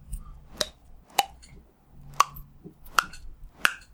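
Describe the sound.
A voice imitates knuckles cracking with mouth clicks: five sharp, pops spaced irregularly over about four seconds, each a bright, hollow click, with faint low rumble underneath and no talking.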